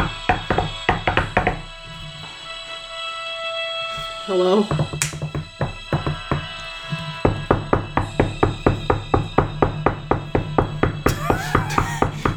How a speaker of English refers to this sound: It's a big house, so it actually sounds like... They have one of those door knocker things? They have a giant door knocker.